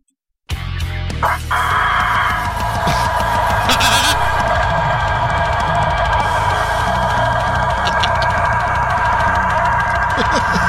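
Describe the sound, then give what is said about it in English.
A rooster lets out one long, loud, strained crow that stretches on and on without a break, harsh and almost scream-like, screaming until it passes out and falls over, with no voices around it. “This one's titled …, and it kind of expresses how we feel sometimes.”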